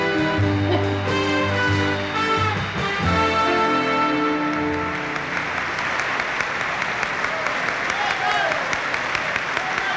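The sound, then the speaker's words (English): A bright musical fanfare gives way to loud, sustained audience applause at the Academy Awards as George Kennedy is announced winner for Cool Hand Luke, a dense steady clatter of many hands clapping that fills the second half without letup. “The crowd's going wild. They love it.”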